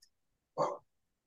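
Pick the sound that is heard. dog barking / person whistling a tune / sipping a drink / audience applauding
dog barking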